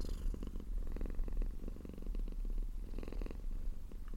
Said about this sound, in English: Thank you so much to Bimmy, who is currently sitting on my knee. Hang on, I'm going to see if I can pick up her purring.